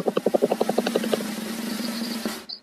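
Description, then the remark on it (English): A helicopter passes overhead, its rotor chopping in rapid rhythmic thumps that blend into a steady low drone before cutting off abruptly. “I think you had a helicopter over there.”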